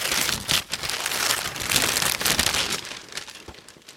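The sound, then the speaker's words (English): Wrapping paper crinkles and tears in a steady, busy rustle lasting several seconds as a Christmas gift is unwrapped, with sharper crackles and rips mixed in and no voices. “I got some National Lampoon's wrapping paper”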